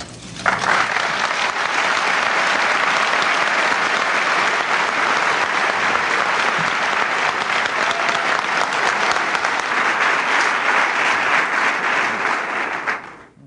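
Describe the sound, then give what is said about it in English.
Sustained, loud applause from a large audience, a dense wash of many hands clapping steadily for over twelve seconds before cutting off at the end, with no voices rising above it. “Thank you very much, but I think George and I should be applauding you.”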